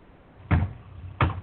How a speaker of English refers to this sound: No, it's next door, hammering. It's next door, hammering. I'm mute. Is that you doing the hammering or somebody else? No, that's next door. That's probably a good 40 feet away, 50 feet away. And I can hear that like it's right next to you.